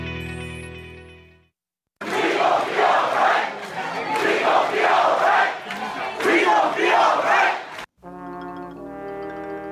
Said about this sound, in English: Beautiful night here in the swamp. The flashbulbs popping and the crowd roaring. Here come the Gators.